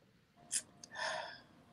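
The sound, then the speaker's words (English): Heavy breathing: a quick, sharp intake of breath, a brief catch, then a long, breathy exhale that trails off. No talking. “What's all the heavy breathing for?”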